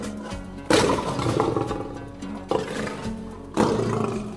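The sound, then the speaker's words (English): A lion roars in deep, rumbling bursts, three strong onsets about a second apart, each swelling loud and gravelly before easing slightly, with no talking. “In England, and several other parts of Europe actually, the lion roars.”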